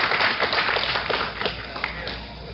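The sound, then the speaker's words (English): A crowd applauds steadily after the president signals for applause, a dense wash of many hands clapping at moderate loudness, with a few sharper claps standing out before it eases slightly toward the end. “The president signaling for applause from the crowd.”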